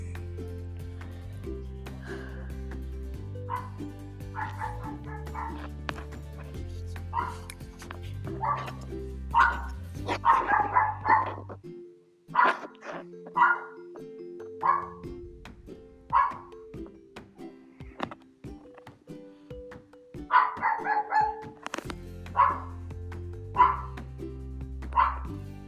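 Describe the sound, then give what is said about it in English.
Several dogs bark repeatedly in loud, uneven bursts, with some yips mixed in, over a steady low background hum that drops out briefly midway. “My dogs are just being so loud.”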